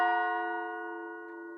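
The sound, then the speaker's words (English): A single clock bell strikes the hour once, a deep, dull, hollow, melancholy tone lingering and slowly fading. The chime is clear, with no voices or other sounds around it. “He spoke before the hour bell sounded, which it now did with a deep, dull, hollow, melancholy 1.”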